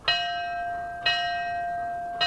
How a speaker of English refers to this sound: In addition to the sounding of the memorial bell honoring the 2,819 victims who lost their lives in the terrorist attacks, Fire Commissioner Adam Teal rang it for the firefighters among them who did not return to their quarters.